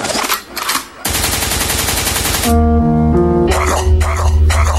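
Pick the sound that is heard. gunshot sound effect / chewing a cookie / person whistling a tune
gunshot sound effect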